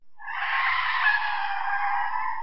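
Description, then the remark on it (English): A passing Rolls Royce's tires screech as it comes to a halt: a loud, sustained screech lasting a couple of seconds, a harsh, steady squeal that starts abruptly and holds at full intensity, with no voices present. “Later, our shadowed figure is walking across a bridge when a passing Rolls Royce screeches to a halt, and four men step out of the car.”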